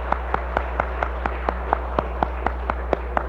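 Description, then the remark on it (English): Steady, evenly paced clapping welcoming a visitor from Peking, China, in Montreal, about fifteen crisp claps in quick regular rhythm, moderately loud over a constant low hum, with no one talking. “Let's applaud and welcome her.”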